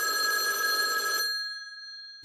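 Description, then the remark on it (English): An old-fashioned telephone bell rings loudly in a single sustained metallic burst, then cuts off and its tones linger briefly before a short thump at the end. “They had to like run to a payphone. Yeah. Done the whole dialing thing.”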